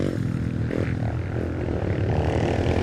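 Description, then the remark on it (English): A motorcycle engine revs loudly, a continuous throaty rumble that swells and dips in pitch for a few seconds with no voices. “Bikers like motorcycles? Yeah, like Harley Davidson.”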